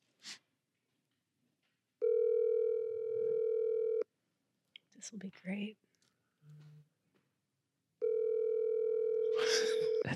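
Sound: phone call ringing tone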